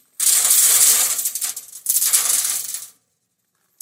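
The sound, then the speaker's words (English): A bright, metallic rush of coins clattering down into a trumpet-shaped offering box in a temple as people give offerings, in two cascades of about a second each, fairly loud, with no voices. “And imagine with me for a moment the amount of noise that the coins will make when you drop the offering.”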